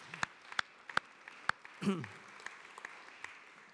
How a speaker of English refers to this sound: I think we should just applaud him for that, actually, for nothing else.